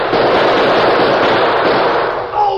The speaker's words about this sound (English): But he kept on shooting, slowly, deliberately, making sure every bullet found its mark.